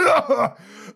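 A voice imitates a cat coughing up a hairball: two short, raspy hacking bursts, trailing off into a quieter strained, throaty sound.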